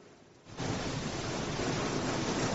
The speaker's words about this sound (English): That is rain hitting the window outside the studios here. Man. Good storm coming down.